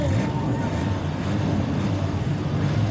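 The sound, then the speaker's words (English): Race car engines start up and rumble loudly and steadily, a dense low roar that holds at constant volume throughout without breaks. “Drivers, start your engine!”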